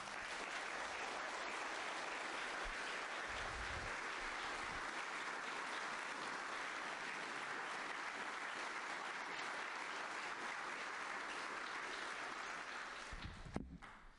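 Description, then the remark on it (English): Sustained applause from a large church audience thanking parish staff, a dense steady wash of many hands clapping for about thirteen seconds before tapering off at the end. “If you could clap at the end of every page, I can keep having the lemonade, keep my blood sugar up.”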